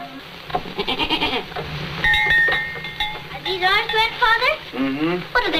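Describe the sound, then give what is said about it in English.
Several goats, including ones named Swanly and Fairly, bleat in wavering, quavering cries, with clinking bells ringing out between the calls and a busy farmyard murmur in the background. “I think you're a beautiful goat.”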